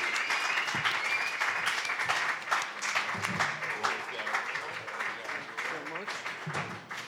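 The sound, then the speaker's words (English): An audience at a New Comic Book Day show applauds a comic book artist being introduced, in a steady, dense wash of clapping lasting several seconds, with faint voices and cheers mixed underneath. “Guys, give your entire rounds of applause for”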